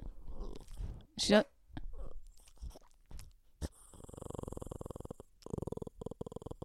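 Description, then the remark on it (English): A female pet dog growls, low and rumbling, rolling on for several seconds in uneven, pulsing stretches, preceded by a few short, scattered sounds. “I don't know if she was dreaming, but she just started growling in the funniest little way.”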